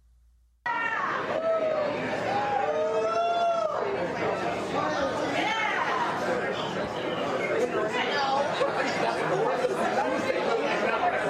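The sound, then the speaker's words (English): Steady restaurant background chatter at a restaurant in Detroit during a visit by Joe Biden: many overlapping voices in a continuous hubbub with clinking and occasional brighter exclamations, no single voice standing out, running evenly throughout. “So barely, just basic restaurant noise.”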